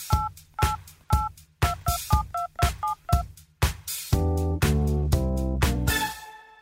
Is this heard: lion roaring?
no